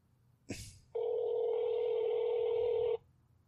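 A brief click, then a steady electronic phone tone holds for about two seconds before cutting off, like an outgoing call ringing on the line as someone places a phone call. Clear and fairly loud, with no talking.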